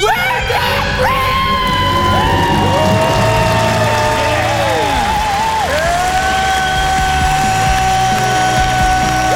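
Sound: celebratory scream and cheering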